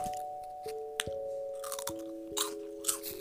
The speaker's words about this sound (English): because she's just chomping on food. That's not what we need right now.